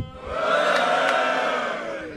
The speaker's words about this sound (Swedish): Och eftersom vi kommer ju sända det online också så kan vi ju så här bevisa att vi har publik. Kan man få ett fyllevrål från publiken?